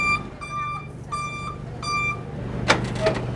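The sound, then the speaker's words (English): The back door of a delivery truck carrying a manatee is opened with a sudden metallic clunk and short rattle, following a run of steady, evenly spaced reversing beeps over a low engine rumble. “They've just opened the back door, and there is a rubbery-looking manatee inside.”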